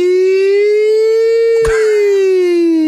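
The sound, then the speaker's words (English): A person imitates an ambulance or fire engine siren with a loud, sustained wailing tone that rises slightly and sags back down, broken by a single brief click partway through. No one speaks. “I don't know what the difference is between an ambulance siren and a firefighter siren.”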